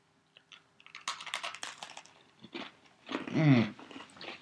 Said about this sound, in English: First thing I noticed right off the bat, very crunchy. This is the crunchiest cookie we've had.